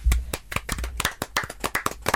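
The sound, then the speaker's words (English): A short burst of applause: a dozen or so sharp, crisp claps in a quick, uneven rhythm, fairly loud, with no voices over it. “Well done, everybody. Round of applause.”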